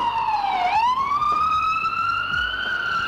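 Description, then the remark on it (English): A loud ambulance siren wails continuously, its pitch dipping and then slowly rising again with strong harmonics as it passes, with faint traffic rumble underneath. “Wait for Mr. Ambulance to go by there.”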